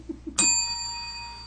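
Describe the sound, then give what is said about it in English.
A single bright bell strike rings out clearly, its clear metallic tone sustaining and slowly fading over the next second, preceded by a couple of soft low thumps. “I don't know why he asked me to ring the bell, but he did.”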